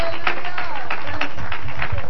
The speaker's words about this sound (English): Oh, clap hands to God right now. Would you do that?